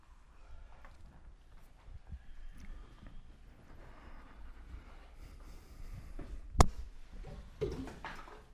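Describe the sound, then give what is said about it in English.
A glass of water spills over with a sudden sharp clatter of ice cubes hitting the floor, followed by a brief splash, over a steady background rumble. “Someone's water spilling over and the ice cubes hitting the ground.”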